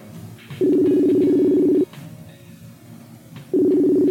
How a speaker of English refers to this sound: He's not going to answer us. I feel like such a bad person for his phone ringing at fucking 3 o'clock in the morning and fucking buttfuck nowhere.